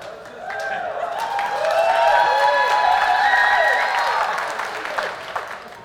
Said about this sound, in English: So just go ahead, clap for her, huh? Just go ahead.